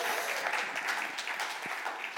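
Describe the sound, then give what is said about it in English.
A crowd applauds steadily for two children attending their first adult service, a dense, even wash of many hands clapping at a fairly loud, constant level with no voices standing out. “I was going to make you applaud them after I pointed them out, but you already applauded.”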